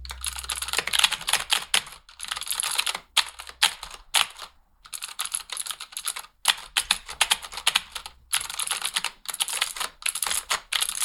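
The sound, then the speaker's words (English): Frantic, rapid clattering on a computer keyboard, fairly loud, imitating someone who types a couple of words and then flaps her hands at the keyboard, with keys hammered in dense flurries broken by a few brief pauses; no voices. “It just had a quality of feeling like she would type a couple words and then just flap her hands at the keyboard.”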